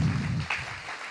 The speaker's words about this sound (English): How about another round of applause for everybody you've seen tonight?